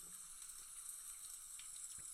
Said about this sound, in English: Let's pour some out here in the trusty little plastic cup.